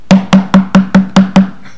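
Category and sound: impact, knocking on wood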